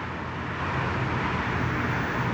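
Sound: road traffic passing by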